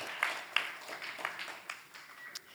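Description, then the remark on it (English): A crowd of teenage campers at River Valley Ranch applauds, a steady wash of many hands clapping with a few sharper claps standing out, with no one speaking. “So give yourselves a round of applause.”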